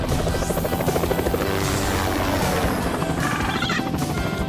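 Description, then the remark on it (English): A helicopter in a Liberty Mutual car insurance advert roars steadily, its rotor blades chopping in a fast, rhythmic thump over a loud, dense engine whine that fills the whole stretch without pause. “What do you say we see what this bird can do?”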